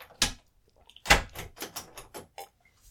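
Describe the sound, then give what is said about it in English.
A door thumps shut with a solid thud after a cat is let in, followed by a quick run of sharp clicks and rattles as the lock is turned, with no voices. “I'm letting the cat in. Okay. I just locked the door.”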